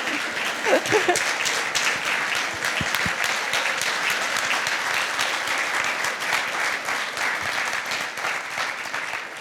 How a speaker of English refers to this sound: In fact, I don't know if Mr. and Mrs. Claus feel like standing up for a little round of applause, because he's here. Santa's here.